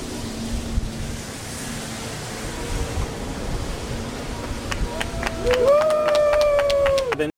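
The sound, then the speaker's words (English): A crowd claps in a steady, noisy wash that fills the whole clip, with a few sharp individual claps and a sustained high whistle rising toward the end, clapping for a man who has just got a crack pipe out of a vending machine. “You know what they're clapping for?”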